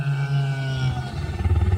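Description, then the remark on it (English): A deep, growling dinosaur roar, low and harmonic, swelling loudly before breaking into a rough, pulsing rumble at the end, with no speech. “Well, let's ask a dinosaur.”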